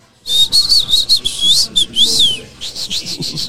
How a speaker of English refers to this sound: I'm not a good whistler, bro. You're a good whistler.